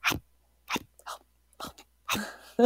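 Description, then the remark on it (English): A dog lets out a few small, short barks, spaced irregularly with brief silences between them, fairly soft, with no one talking. “Like, here you are like barking up a storm and you can't do it for like a treat”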